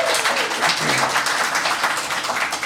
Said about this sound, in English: A round of applause for the Columbo Street Irregulars!